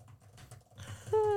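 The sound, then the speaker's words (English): Quick, soft typing on a thin tablet keyboard case, a short run of light tapping clicks, ending in a sudden louder steady tone. “The keyboard is very satisfying.”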